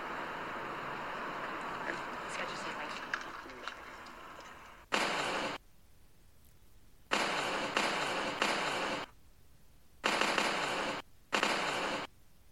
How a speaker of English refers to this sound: Sounds like fireworks, doesn't it? Really grips your attention. Not my sound effects, by the way. These are in the films. The one shots are, anyway.